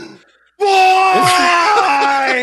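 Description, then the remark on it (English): A man's voice lets out a sudden, loud, sustained scream of rage lasting about two seconds, imitating a golfer's enraged outburst after hitting the ball, after a brief quiet start. “scream at the top of his lungs for 3 hours in rage, if I'm honest.”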